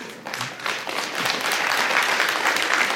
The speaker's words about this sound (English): Thank you for that forced golf clap. I don't mind. I'll take whatever I can get.